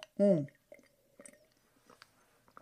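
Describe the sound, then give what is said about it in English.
Someone takes a quick sip of peppermint coffee from a mug, with a short voiced murmur of enjoyment, followed by soft swallowing and faint mouth clicks in an otherwise quiet room. “So in any case, I'm going to take one more little sip of this delicious peppermint coffee”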